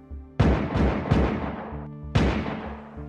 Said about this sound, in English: On January 7th of 2023, Sugarland police responded to reports of a shooting near Oxford Mills Lane. 4 gunshots were heard